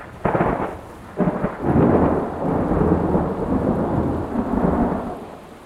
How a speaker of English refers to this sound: As Ken and his friends hiked, the wind started howling, and the clouds opened up and poured down on them.